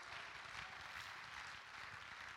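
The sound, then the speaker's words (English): An audience claps hands to the Lord during worship, a dense, steady wash of many overlapping claps without pause, moderately loud, with no voices standing out. “Clap your hands unto the Lord and say, God, we need a move of your Spirit.”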